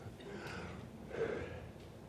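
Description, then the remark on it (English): Two soft, breathy sniffles a moment apart from someone getting over something, short nasal intakes of air over a faint background hiss, with no talking. “Pardon my sniffles this morning from time to time.”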